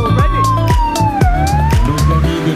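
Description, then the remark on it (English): Loud emergency sirens from two emergency medical bikes driving through the start of a running race wail with a slowly sliding pitch over a busy rumble of engines and outdoor crowd noise. “Moments later, and we could hear sirens behind us, and two emergency medical bikes appeared and drove through the start.”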